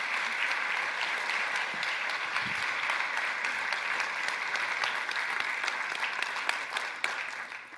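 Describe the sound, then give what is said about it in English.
An audience applauds for a woman after a prayer, steadily for several seconds, a dense, even wash of many hands clapping at a constant moderate level, with a few sharper individual claps near the end. “Can we clap for her today?”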